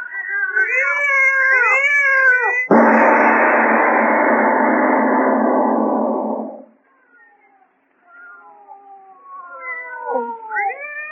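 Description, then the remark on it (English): Two cats yowl and caterwaul in long, wavering, overlapping cries. A harsh, loud hissing burst takes over for several seconds, then fainter drawn-out yowls resume with no one speaking. “Lona, listen to them. They're not ordinary cats. Listen to them.”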